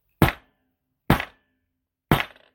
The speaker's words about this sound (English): So I'm going to bang the gavel for opening arguments.